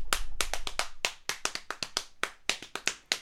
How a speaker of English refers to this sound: That's a track. That's all me just slapping my hands on my knees.